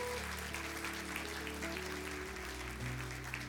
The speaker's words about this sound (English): Can we clap our hands and give God praise? Come on.